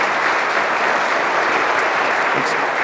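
An audience claps steadily, a dense, even wash of many hands applauding at a constant loudness throughout, with no voices rising above it.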